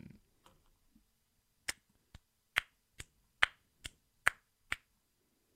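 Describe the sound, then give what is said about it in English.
Around eight crisp finger snaps in a steady, fairly quick rhythm, each one a sharp, bright click over near silence, with a few faint soft taps before they start. “Like some snaps instead of claps.”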